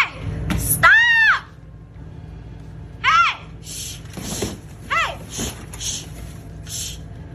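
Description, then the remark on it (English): A woman yells at a bear inside a 7-Eleven store in three shrill, strained bursts spaced a couple of seconds apart, loud, over a low background hum with scattered faint noises. “Damn, why you gonna yell at him like that for?”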